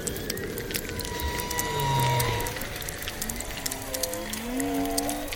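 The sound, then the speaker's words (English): Whale song with drawn-out, gliding moans and rising and falling tones that overlap one another, set against a steady background of crackling clicks and underwater hiss. No one speaks. “So whale song is the most obvious example of this.”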